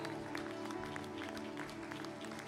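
An audience claps steadily as a hand clap of praise in the morning, a dense wash of many hands with scattered sharp slaps, joined by a low sustained hum or organ tone beneath the applause.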